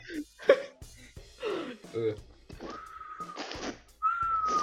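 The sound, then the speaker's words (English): Someone attempts to whistle, producing mostly breathy, airy blowing with a couple of thin, wavering tones that break in and out, alongside some brief vocal sounds and gasps. “We have someone trying to whistle.”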